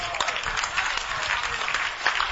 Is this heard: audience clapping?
yes